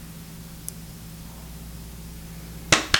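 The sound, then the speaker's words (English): After nearly three seconds of low, steady hum, two sharp hand claps by two people land in quick succession, a fraction of a second apart, each loud and crisp, with no talking. “Okay, 1, 2, 3, and now we can clap whenever, okay?”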